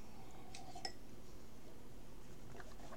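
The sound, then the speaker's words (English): A couple of faint, light glass clinks early on as someone takes a sip from a glass, one with a brief bright ring, followed by soft handling noise and low background hiss with no talking. “Another sip. I'm trying to keep my throat lubricated here.”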